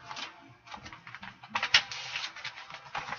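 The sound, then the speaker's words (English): Crisp, papery rustling as the pages of a paper outline are flipped one after another, a steady run of soft swishes and crinkles with one sharper snap partway through, no voices. “Gonna flip through this paper.”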